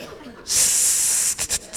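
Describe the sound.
A long, loud hiss of an aerosol hairspray can being sprayed onto hair, followed by several short, sharp bursts of spray with brief gaps between them.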